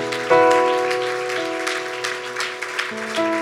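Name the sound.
audience hand clapping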